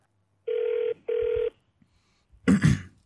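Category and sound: signal or alarm, telephone ringing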